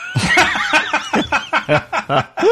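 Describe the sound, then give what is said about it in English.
A loud run of wheezing breaths, about eight rhythmic voiced gasps in quick succession, sounding like a breathy, snickering laugh, with no words spoken. “Oh, well, that's just wheezing.”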